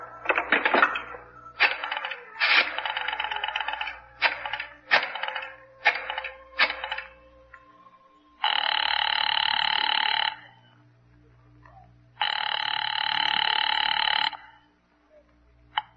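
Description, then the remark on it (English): A rotary phone is dialed with a run of quick clicks and whirring returns to call the District Attorney's Office, then two long, loud bursts of ringing bell. “You mind if I use this phone?”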